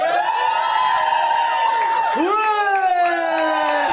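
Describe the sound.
A live audience cheers to show agreement with a panelist's advice, loudly and steadily for about four seconds, a dense wall of many voices shouting and whooping together, with the pitch dipping briefly and then rising again midway.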